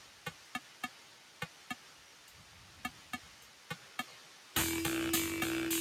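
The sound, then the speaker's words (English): Rain: a dozen sharp, scattered taps of falling drops at an uneven pace, then an abrupt switch to a loud, dense, steady hiss of downpour with a low hum underneath. “Oh my goodness, it's not an ocean. It was rain.”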